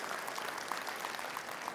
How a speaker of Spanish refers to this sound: Está conmigo, denle un aplauso al Señor, que Él se lo merece.